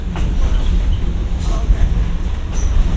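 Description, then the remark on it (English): A train rolls steadily along the rails by County Road ES, with a deep, continuous rumble and faint metallic squeals from the wheels, as the brakes are applied when it gets a little quick. “He felt it getting a little quick, if it was getting a little quick, so he had to put the brakes on.”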